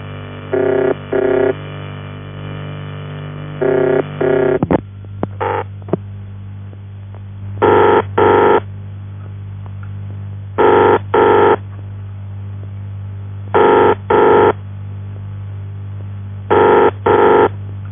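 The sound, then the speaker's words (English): A ringing tone from the ringing machine of a UAX-7 telephone exchange repeats as buzzy double bursts roughly every three seconds over a steady low electrical hum, with a few switching clicks partway through and no voices. “In the last case, this type of machine seems to be only fitted to the UAX-7, and therefore it's very characteristic.”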